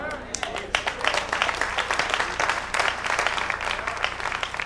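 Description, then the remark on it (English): An audience claps their hands, a dense, uneven patter of many sharp claps that keeps going steadily for several seconds at a moderate level, with a low murmur of voices underneath. “Oh, the hand claps.”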